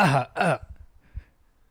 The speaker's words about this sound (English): Let me clear my throat.